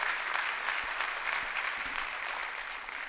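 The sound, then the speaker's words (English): An audience claps steadily, a dense wash of applause that holds at an even level for the whole stretch, with no voices standing out above it. “Like five of you wanted to clap. More of you, it's good. Thank you.”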